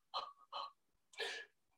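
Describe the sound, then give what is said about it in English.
Shallow, quick mouth breathing, demonstrated on its own as most people breathe: two short airy breaths followed by a longer, breathier exhale, fairly loud with a hissing, rushing quality and no talking. “Box breathing, most people are mouth breathers. And it's about this shallow.”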